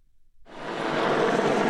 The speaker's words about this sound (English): Apaches, Chinooks, Wildcats and Tornadoes soar overhead while parachute regiment troops and armoured vehicles assault the building. A demonstration from the Joint Expeditionary Force.